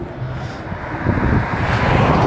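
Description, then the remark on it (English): Steady roadside traffic noise with cars rumbling past, a broad whooshing roar that swells louder toward the end, with some wind buffeting and no voices. “So that's what you hear, the cars going by.”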